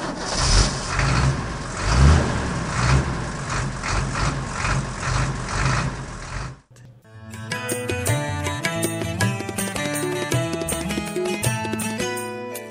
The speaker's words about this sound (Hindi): हम निकल लेते हैं। उन्होंने देख भी नहीं पाया गाड़ी को टूटी हुई। चल तू गाड़ी स्टार्ट कर।